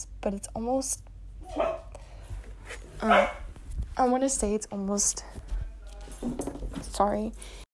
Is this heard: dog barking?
yes